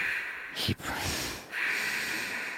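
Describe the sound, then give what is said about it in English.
A voice imitates heavy, close-miked breathing, with a couple of loud, airy exhales and inhales rushing right into the microphone, one long breath following a brief pause. “He breathes into the mic.”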